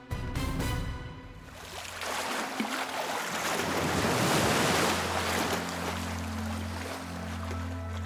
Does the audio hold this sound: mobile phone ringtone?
no